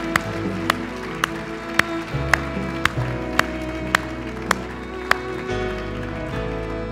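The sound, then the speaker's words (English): A church audience gives the Lord a clap offering, clapping in steady unison, about ten sharp claps at an even beat, over sustained music with a low bass underneath; the clapping stops and the music carries on. “Let's give the Lord a clap offering for what he has done for us through Christ.”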